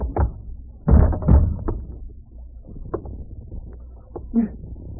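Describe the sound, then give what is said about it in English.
A heavy thud of a blow knocking a man unconscious lands, quickly followed by a second impact, then quieter scattered knocks and shuffling as things settle. “I didn't want to knock you out, much less tie you up.”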